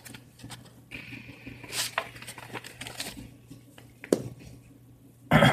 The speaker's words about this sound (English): You hear rustling. In the brush all around you.